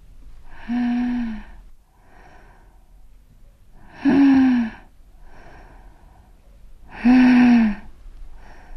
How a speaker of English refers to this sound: And then the breathing started, sharp and shallow. It didn't mean much, the nurses said. It might be the start of something, though maybe not.